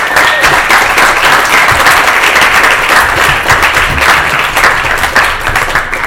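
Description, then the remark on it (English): Sustained audience applause welcoming a guest in Norway, a dense, steady wash of many hands clapping at an even loudness for about six seconds, with no voices standing out. “Please give a round of biggest round of applause”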